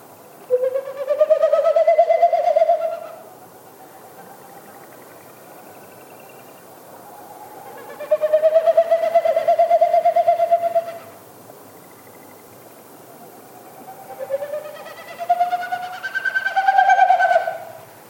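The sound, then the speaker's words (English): A male Wilson's snipe winnowing three times in its spring territorial flight, the sound made with its wings and tail rather than its voice: hollow, rapidly pulsing hoo-hoo-hoo bursts, each lasting a few seconds and swelling then fading, separated by quiet pauses, fairly clear. “What you heard is a Wilson snipe doing its territorial sound, but it's made with its wings and its tail.”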